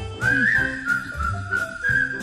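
A bright, steady whistled melody carries a tune over a soft rhythmic accompaniment, the notes gliding smoothly and sustained, clear throughout.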